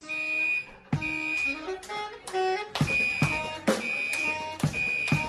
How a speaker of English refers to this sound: All right, two guys, their friends, they were playing jazz in a restaurant when the kitchen set off the fire alarm. And I don't know why they didn't run out, but instead they incorporated the fire alarm into their song.